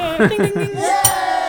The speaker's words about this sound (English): Inadequate bell skills again. Yeah, just gotta tap it.